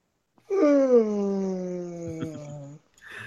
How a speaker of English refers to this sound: TK is going to be angry that you yawned at 1.